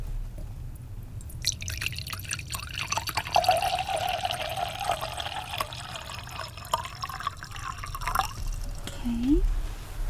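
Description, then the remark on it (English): Water is served with dinner, pouring steadily into a glass for about seven seconds, its gurgling tone rising in pitch as the glass fills, then stops abruptly. “Here's water.”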